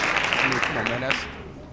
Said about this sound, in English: Hand claps for this man.